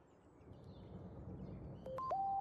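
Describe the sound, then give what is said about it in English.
A Facebook notification alert tone: a quick sequence of short electronic beeps stepping up then settling on a mid-pitched note, heard clearly above a steady low background rumble near the end. “Facebook notification.”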